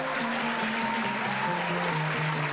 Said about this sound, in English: And that is a big round of applause right there.